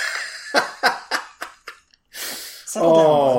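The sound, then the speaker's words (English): A dog sneezes in a quick run of five short, sharp snorts that get quieter, then gives a longer breathy huff before a voice starts up. “My dog is sneezing because he's allergic to your bullshit.”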